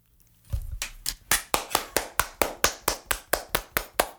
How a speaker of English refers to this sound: Y'all better be applauding out there. It's really not that hard.